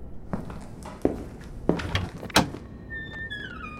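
A closed door at the end of a hallway is pushed open with a few dull, heavy thunks, followed by a drawn-out, high-pitched creak as it swings. The sounds are fairly loud, with no voices.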